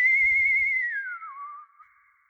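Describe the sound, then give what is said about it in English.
A lone whistled tone holds steady, then slides downward and wavers on a lower note before fading out, with a faint low rumble underneath at first and no talking. “As our eyes adjusted to the dark, it became clear it wasn't Emery, but it was whistling Emery's tune.”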